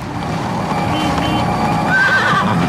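A horse neighs loudly, its whinny rising into a shrill, wavering cry near the end, over a steady rumble of background noise with no talking.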